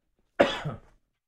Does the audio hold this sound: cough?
yes